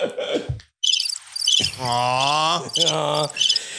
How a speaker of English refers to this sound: Crickets? Cricket. Why is there crickets, crickets, you son of a bitch?